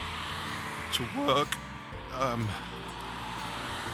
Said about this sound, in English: You can still hear there's traffic going past. People still going